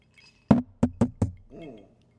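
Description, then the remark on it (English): Bourbon glasses clink together four times in quick, slightly uneven succession, fairly crisp, followed by a brief soft murmur before fading to quiet. “Oh, dude, clink that.”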